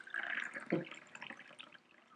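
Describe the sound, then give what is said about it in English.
Water pours steadily from a pitcher into a cup with a continuous splashing trickle, fairly quiet, with a brief louder gurgle partway through before it thins out. “So my cup runneth over. You might think, okay, splash here, splash there.”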